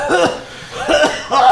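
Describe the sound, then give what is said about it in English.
A person fakes a bout of coughing: three throaty, voiced coughs with short gaps between them, theatrical rather than natural, with no other talking. The coughs are voiced as Spider-Man coughing after a lemony-scented gas envelops him. “A gas envelopes Spider-Man because of the lemony scent, and he begins coughing.”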